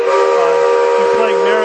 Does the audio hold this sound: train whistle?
yes